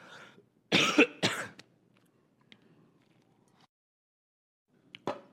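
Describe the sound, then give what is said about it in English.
Two loud coughs in quick succession, followed by a quiet pause and a brief, sharper cough or throat-clear near the end. No talking. “I'm going to cough again.”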